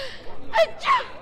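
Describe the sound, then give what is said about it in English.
A sneeze: a quick breathy intake followed by a sharp, noisy burst of air, about a second long and moderately loud, with no talking. “I only said Gesundheit.”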